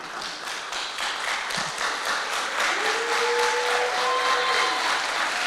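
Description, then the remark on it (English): A crowd claps steadily and continuously for several seconds, a dense wash of many hands, with a few sustained whoops rising over the applause toward the end. “And the trees of the field will clap their hands.”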